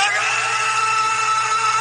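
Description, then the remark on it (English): A man on a mountaintop screams a villain's name in a long, loud scream, held at full strength without a break for about two seconds, strained, with no other sounds around it. “But this is on a fucking mountaintop, screaming the villain's name.”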